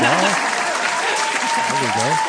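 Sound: applause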